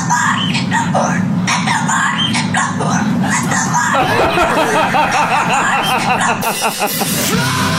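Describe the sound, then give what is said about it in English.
A cockatoo, bought from a seller on Craigslist, makes loud, continuous squawks and chattering calls, with raspy bursts that sound a bit like snickering laughter and barking, running unbroken for several seconds. “I just bought a cockatoo from a guy on Craigslist, and it keeps on making these”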